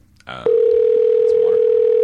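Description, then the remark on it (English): A short buzzy burst gives way to a loud, steady telephone tone, a single unwavering mid-low pitch that holds without a break until the end. “Where's the call from?”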